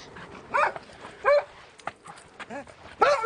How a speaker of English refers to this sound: The delighted barks of Freckles the dog.